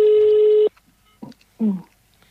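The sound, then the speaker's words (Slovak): A telephone rings with a call coming in to the radio show Slobodný vysielač: one loud, steady electronic tone lasting under a second, followed by a couple of short, faint murmurs. “aha, už nás zvoní, zvedavý, čo chcel, kto chcel”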